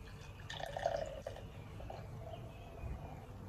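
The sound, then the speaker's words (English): Beer pours into a can-shaped Warner's at the Bay glass with a gurgling, bubbly trickle and a faintly rising pitch as it fills, fairly quiet, with no voices over it. “Okay, it'll be a little bit more gentle on the pour, I think.”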